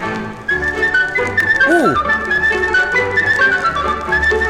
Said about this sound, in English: At first I thought that was somebody actually whistling, but I think that's a tin whistle. You know, like, I wouldn't think, oh, this is gypsy music. You're right. You know? It's too happy.